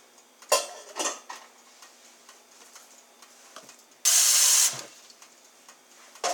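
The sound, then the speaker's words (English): A few light clinks and knocks of kitchenware, then a brief, loud rush of about a cup and a half of water splashing into a pot of rinsed quinoa for about half a second, with no talking. “Now I'm going to put in about a cup and a half of water.”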